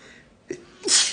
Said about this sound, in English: I'm gonna sneeze. Maybe not.